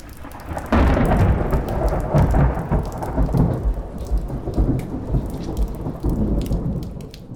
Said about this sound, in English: Then Jack notices a storm in the distance and decides they should head back.